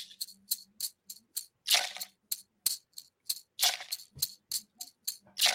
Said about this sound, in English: So here's one of my rattles I made. This is a hoop of birch with corn inside. Corn, huge, huge part of Mohawk culture, wrapped around with deer hide.